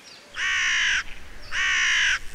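Two loud, harsh caws from a big black crow in Gamilaroi country, inland New South Wales near the Queensland border, each drawn out for about half a second with a short pause between them, over a faint background hum.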